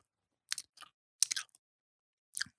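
Crunchy chewing right up against the microphone, four short crackling bites spaced irregularly with quiet gaps between, with no talking.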